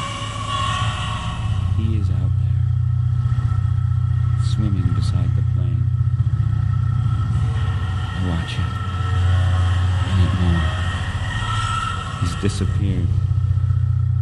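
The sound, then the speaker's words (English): A steady, loud airplane engine drone hums low and continuous throughout after one engine has quit, with a person's voice speaking intermittently over it. “An engine has quit. Pilot says no danger.”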